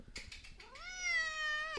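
cat meowing

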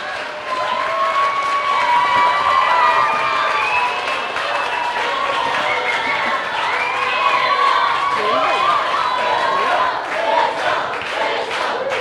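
audience cheering

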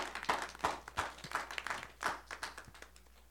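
audience clapping

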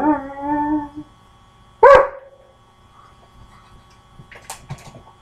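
dog howling and whimpering

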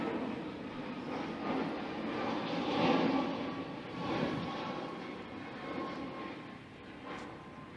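airplane flying overhead

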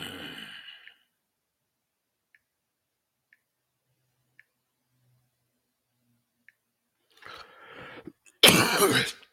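throat clearing

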